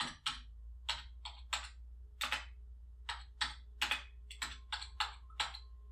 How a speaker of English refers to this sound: That's a keyboard. What am I typing?